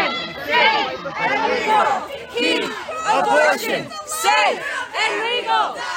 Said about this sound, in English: Protesters are protesting, drawing coat hangers on the sidewalks and on the streets and shouting, some might even say screeching. This is what it sounds like. And this is only at 50% volume, my friends.